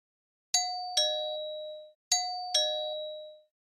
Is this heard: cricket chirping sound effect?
no